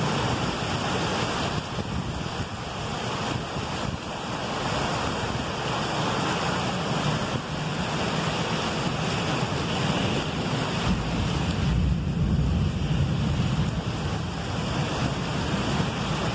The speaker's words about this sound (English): We see that lightning. Let's see if we can get a thunder in here for the recording. A lot of lightning.